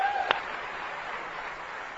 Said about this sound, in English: So, gentlemen, take that as my gift to you. Far cheaper than anything else I could buy, and I hope you appreciated that applause.